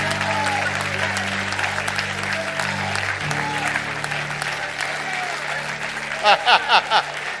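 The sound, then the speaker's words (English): A church crowd claps steadily in sustained standing applause over a low droning hum, with a few louder shouts or cheers bursting out near the end. “You just gotta stand and applaud.”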